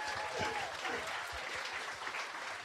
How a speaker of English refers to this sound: A round of applause to both these guys.